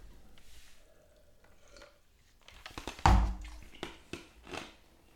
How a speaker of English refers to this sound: Just gonna take a sip of my drink here.